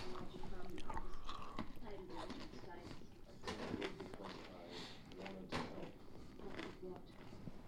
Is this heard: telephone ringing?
no